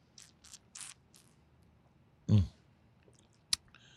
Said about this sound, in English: We're going to wave these around and take your first sip. It smells like... smells grapefruity and orange juicy. It smells like a hazy IPA, doesn't it?